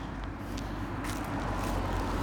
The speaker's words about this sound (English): Car is driving by casually.